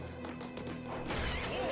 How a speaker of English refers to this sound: Why did they kick the door open instead of just going outside?